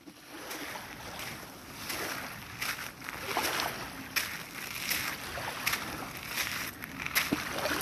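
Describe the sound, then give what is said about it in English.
Ocean waves wash steadily onto a beach, a continuous hissing roar of surf that swells and recedes in soft surges, moderately loud, with no voices. “I walked along the beach and listened to the waves.”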